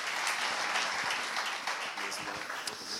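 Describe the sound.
Steady audience applause fills the space, a dense wash of many hands clapping at once, with faint voices murmuring underneath as the clapping continues throughout.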